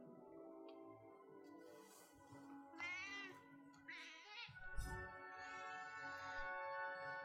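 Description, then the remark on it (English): A fat cat meows several times in drawn-out, wavering calls, fairly loud, with a low background hum underneath. “It's fat. A fat cat.”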